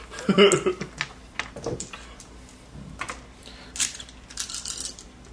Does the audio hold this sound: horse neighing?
no